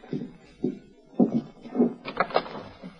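A door creaks and rattles open in a few uneven bursts as someone enters a room, moderately loud, with a louder squeaky stretch near the end.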